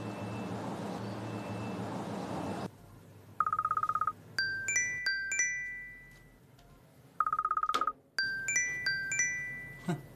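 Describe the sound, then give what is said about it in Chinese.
A mobile phone ringtone plays twice as a call comes in about a yellow diamond listed for sale online, each round opening with a steady buzzing tone and then a bright, chiming melody of quick high notes, clear, with no one speaking. “咁快就有人打呢个电话俾我。”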